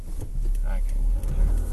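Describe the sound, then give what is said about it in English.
Steady, deep road rumble fills the cabin of a car driving home on a Thursday afternoon, a continuous low drone with engine hum and a brief murmur of voice partway through. “Yeah, I recorded this in the car. Driving home.”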